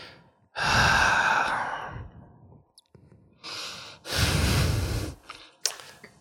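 A person coughs close by in a few rough, breathy bursts with short gaps between, ending in a sharp final hack. No one speaks.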